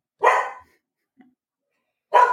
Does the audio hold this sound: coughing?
no